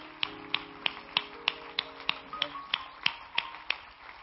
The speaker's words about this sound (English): Let's honor them again with a great hand clap of appreciation.